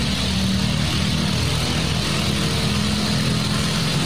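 A small gasoline engine runs steadily at close range, a continuous low throbbing drone with a rough, buzzy exhaust tone and no voices over it.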